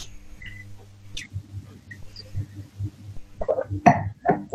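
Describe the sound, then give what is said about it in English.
Quiet drinking sounds of wine and water sommeliers tasting: a few faint, high glassy clinks and soft sips over a low steady hum, ending in louder slurping and swallowing noises. Nobody speaks. “It's because wine sommeliers and water sommeliers like to drink and don't like to talk.”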